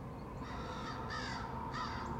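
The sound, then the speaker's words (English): Crows caw in a few harsh, rasping calls spaced about half a second apart, loud over a steady background hum, with no talking. “Ooh, the crows say so.”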